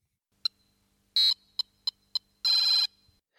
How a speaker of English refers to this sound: The several B tones leading to a final E-G trill, implying a sustained E minor chord, solidifies the key and harmonic function of Donkey Kong's beeps.